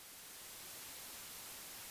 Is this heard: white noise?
yes